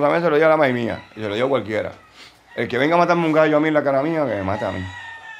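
A rooster on the island crows twice in loud, drawn-out calls, the first lasting about two seconds and the second longer, with a short pause between them.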